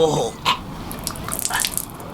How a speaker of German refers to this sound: Die Wellen sind keine 5 Meter hoch und...